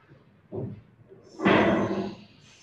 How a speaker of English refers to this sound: Stepping through, the door closes behind you